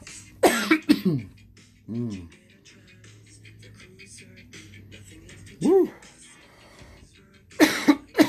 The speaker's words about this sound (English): But yo, I'm over your coughing.